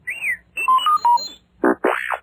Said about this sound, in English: You can read along with me in your book. You will know it is time to turn the page when you hear R2-D2 beep like this.